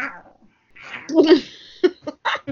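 A cat named Dash jumps up and lets out a drawn-out meow, followed by a few short, clipped vocal bursts; no one talks over it.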